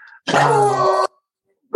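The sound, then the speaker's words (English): A female dog lets out a single drawn-out howl, fairly loud, holding a steady whining tone for just under a second before cutting off into quiet. “she's howling. She's upset. She can't let this go.”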